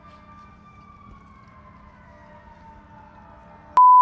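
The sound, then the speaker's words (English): A siren wails steadily outdoors, its pitch slowly sliding lower as it passes over a low rumble of traffic, then the sound cuts off abruptly into a loud, flat electronic tone. “There was some sirens.”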